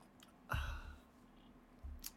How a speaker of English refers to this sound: A sip of water.